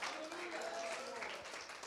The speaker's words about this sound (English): If you believe that, can somebody clap your hands and can somebody shout hallelujah.